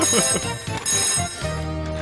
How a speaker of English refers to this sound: Oh, hey, someone's calling on the picture phone.